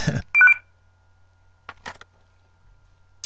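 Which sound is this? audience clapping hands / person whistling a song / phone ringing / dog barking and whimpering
phone ringing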